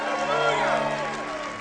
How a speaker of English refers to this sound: Anybody else wants to join him? Well, come on, guys. Let's clap for this one guy right here. God bless you.